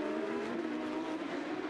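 Porsche Carrera Cup race car engines roar at a steady, sustained pitch, a continuous loud mechanical drone with no voices, as the cars run on the track at Toronto in race two of the 2022 North America season, under full course yellow.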